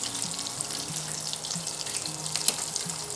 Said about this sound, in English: Smells yummy. I mean, it's really hard to screw these up. It's cheese and peppers. I mean, and you're frying cheese. So who doesn't like deep fried cheese?